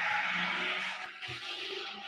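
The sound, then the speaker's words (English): A neighbor's fast car accelerates away as he heads off to work, tires squealing, a sustained screeching skid over a revving engine, fairly loud and continuous throughout with no talking. “Sounds like the neighbor's headed off to work, guys. Sounds like the neighbor's headed off. He's got a nice fast car.”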